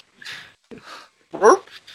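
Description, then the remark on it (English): A dog whimpers in a few short, breathy bursts, then lets out one louder, sharper bark, with brief pauses between the sounds. “There he is. Speaking of the dog.”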